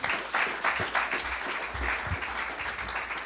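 A church audience breaks into steady applause for a piano player invited up to share what God is doing in his family, many hands clapping in a dense, crackling wash that holds at a fairly even level for the whole stretch, with no voices standing out.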